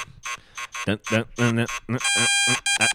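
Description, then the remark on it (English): A voice imitates a second, higher-pitched buzzer, first in a few short choppy bursts, then in one steady, flat, nasal tone held for about half a second, loud. “All right, yours is deeper, mine's higher.”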